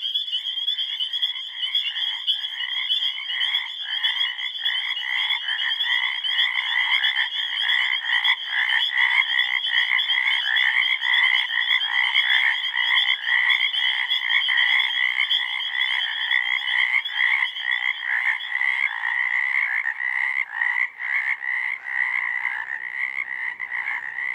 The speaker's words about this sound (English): All land vertebrates have a larynx, the muscular top end of the windpipe. Frogs turned this protective valve into a singing reed.